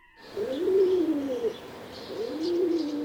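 Pigeons coo softly in a backyard in two low, rolling phrases, each rising and falling over about a second, with a faint outdoor hiss and no talking.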